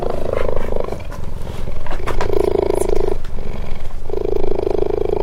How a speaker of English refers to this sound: And the cheetah came over and sat right on the other side of my microphone. I held the mic up, and it raised its head and started purring.